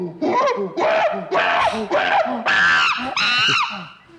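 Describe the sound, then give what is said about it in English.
A monkey screams in a rapid series of shrill, harmonic shrieks, about six bursts over four seconds, loud with short gaps between calls. “Give my screaming monkey a break.”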